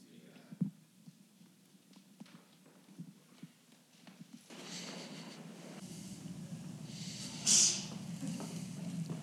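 A single sharp sneeze bursts out near the end from someone in the audience during a church service, over a low murmur of background noise and a few soft knocks earlier on.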